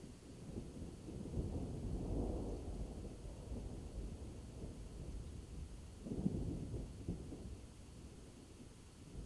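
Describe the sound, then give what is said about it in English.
Low, rumbling thunder rolls on continuously, swelling around two seconds and again near six, with a steady wash of rain or wind beneath and no voices. “The rolling sound of thunder.”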